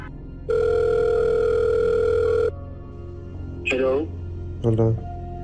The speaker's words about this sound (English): Your phone rings, and a mysterious voice speaking in English with an Israeli accent tells you to stop your coverage or to turn it against Hamas.